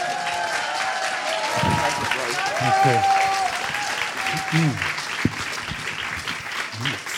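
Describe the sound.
A crowd claps steadily and loudly for several seconds, with a few cheers mixed in, while a man briefly speaks over the applause.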